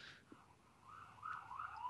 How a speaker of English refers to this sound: I'm sorry that ambulance was coming down our street.